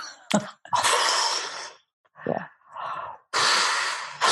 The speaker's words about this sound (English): For anybody that's listening in, we're just breathing.